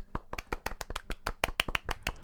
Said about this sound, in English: Would you say that it deserves a golf clap?